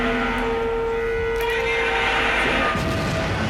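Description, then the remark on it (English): Outdoor suburban neighborhood ambience in the Washington, DC metro area on a very warm day: a steady wash of traffic noise with a faint, continuous droning hum underneath, fairly loud and unchanging, with no voices. “Got your usual, you know, sounds for a neighborhood in the DC metro area.”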